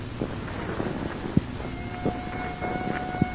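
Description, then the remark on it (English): A police car siren wails out in the country through steady wind and low rumbling noise, its tone emerging partway through as the car approaches, with a few soft thumps along the way. “What is there about police drivers? Even out in the country, they got to lay on those sirens.”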